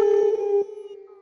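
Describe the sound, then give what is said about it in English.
A human voice gives a good night howl like a wolf, one loud, steady, drawn-out tone held for over a second before trailing off slightly lower at the end. “to all the Wolfpack out there worldwide, wherever you are, whatever you're doing, I hope you'll join me in a good night howl.”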